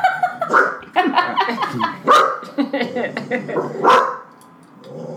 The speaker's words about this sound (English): Sorry, the dog is growling in the background. Shush, bro.